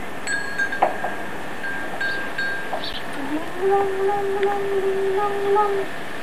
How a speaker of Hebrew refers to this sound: מה אתה אומר? פעמונים. פעמונים.